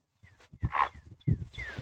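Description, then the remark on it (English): A heron squawks twice, each call a harsh, raspy croak, fairly loud, with a short pause between them and a faint background hiss. “Oh, here's the heron again.”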